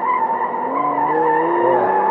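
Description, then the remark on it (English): The tires of a bright green Lamborghini give a loud, sustained squeal as it skids, with harsh, steady screeching and shifting pitch lasting about two seconds, with no talking. “Oh, in fact, it's my Lambo.”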